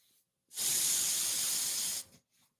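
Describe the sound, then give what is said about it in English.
A steady, loud airy rush of inhaled air through a bong-like piece that acts like pulling the slide out of a bong, lasting about a second and a half, with faint breaths just before and after. “It's got this thing that pretty much acts like when you clear the slide out of bong.”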